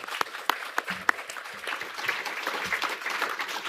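An audience breaks into applause, a dense, steady patter of many hands clapping together with a few sharper individual claps standing out at the start.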